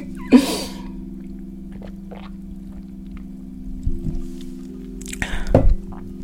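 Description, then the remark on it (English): Sounds of someone drinking water: a brief slurp at the start, then quiet gulps and a wet sip near the end, with a steady low hum underneath. “So let me get some water on that.”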